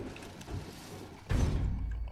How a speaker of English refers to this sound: I'm closing that door.